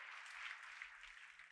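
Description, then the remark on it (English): An audience claps hands in praise of the Lord, a dense, steady wash of many hands applauding together, fairly loud and continuous with no voices over it. “Come on, put your hands together and give the Lord a hand clap of praise today.”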